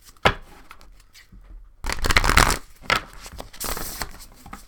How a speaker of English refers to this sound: I love the sound of cards being shuffled. All right, one more time.